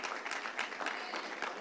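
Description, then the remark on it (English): A crowd claps steadily, a dense burst of applause from many hands that stays at a fairly even level throughout, with no voices rising above it. “Every clap is a campus. Let me count them.”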